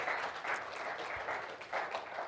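An audience applauds a staff member for his hard work, a dense wash of many hands clapping at once, loud and sustained for the full couple of seconds with slight swells in intensity.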